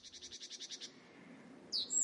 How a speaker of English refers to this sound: Many birds like cuckoo, parrots started singing.